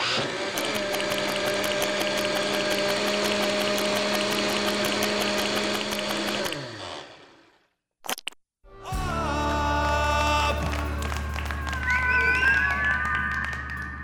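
A squid in a blender: a loud, steady blender motor whirs with rapid pulsing and watery churning for several seconds, cuts out to near silence with a brief click, then roars back with wavering, rising whines.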